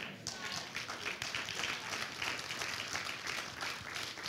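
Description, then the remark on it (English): An audience clapping in a steady, dense patter of many hands, continuing evenly for a few seconds at a moderate level with faint murmuring underneath. “I see you clapping, but you need to hear this because the victim card is no good.”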